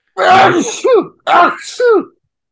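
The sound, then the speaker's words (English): A voice imitates a loud, screaming sneeze twice in a row: each burst opens with a harsh, breathy rush and ends in a shrill, falling yell. Forceful. “I'm also a scream sneezer, so therefore I'm also a scream vomiter.”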